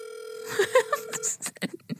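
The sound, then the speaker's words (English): A steady, buzzing telephone tone holds for about a second while a quick run of dialing clicks and beeps sounds over it, then a few more brief taps follow after the tone stops, as a phone call is placed to a second Taco Bell location. “I'm calling a different location. Location number 2.”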